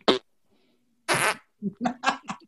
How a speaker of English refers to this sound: If we actually had a sound machine, it would be nothing but fart noises.